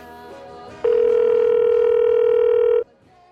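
A Soul Food answering machine starts up with a single loud, steady electronic tone held for about two seconds, mid-pitched with a buzzy edge, over a faint murmur of background noise.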